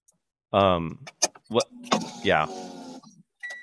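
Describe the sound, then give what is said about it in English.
A car's power window motor hums steadily for a second or so as the windows are opened, partly covered by brief voices talking, then cuts off. “Are you starting your car? No. I tried to open the windows.”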